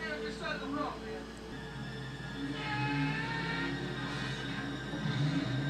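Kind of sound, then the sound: vehicle, race cars accelerating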